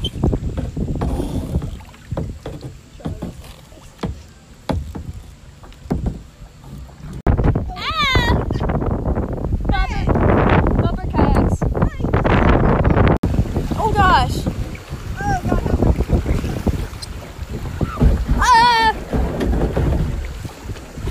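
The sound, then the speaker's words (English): A kayak splashes through shallow rapids about 2 inches deep, with rushing water and wind buffeting the microphone, while people shout and let out high, wavering yelps and laughs. “I think there are rapids up here, so that'll be fun.”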